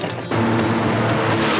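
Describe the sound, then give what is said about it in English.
The engines of ten big bobtail trucks roar to life with a sudden surge at the start of a race trial heat, a dense, loud rumble of the motors revving together and holding steady at full throttle. “And they're off. 10 of the biggest, baddest trucks around in a trial heat for the first ever Get Down and Burn Rubber Bobtail Truck Race.”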